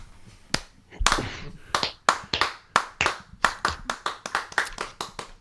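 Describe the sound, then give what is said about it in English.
A slow clap: single sharp handclaps spaced about half a second apart, gradually quickening into a steadier, faster rhythm of roughly fifteen claps, with no talking. “Slow clap.”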